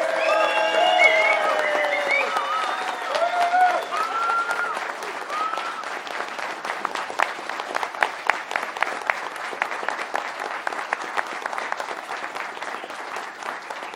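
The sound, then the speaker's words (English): An audience claps steadily for about fourteen seconds, on behalf of Frontier, for its community manager, the dense patter thinning slightly toward the end, with scattered whoops and cheering voices over the clapping early on. “So on behalf of Frontier, give him a round of applause.”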